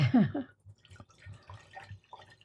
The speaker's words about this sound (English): So let's go ahead and pour it. Now, I've got the big-ass glasses out.